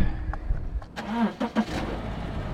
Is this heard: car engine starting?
yes